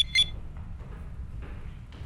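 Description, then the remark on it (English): A cell phone gives a single short electronic ringtone chirp right at the start, bright and tonal, then fades into a low, steady background rumble with no further rings. “I do believe your cell is ringing.”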